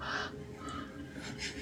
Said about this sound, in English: She's talking to the crow.